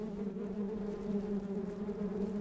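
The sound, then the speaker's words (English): A steady common wasp (Vespula vulgaris) buzz drones on without a break, its even hum holding at a constant pitch and loudness with no voices or other sounds. “Common wasps live their lives as part of a thriving, bustling community in which thousands of individuals work together to ensure the production of a next generation.”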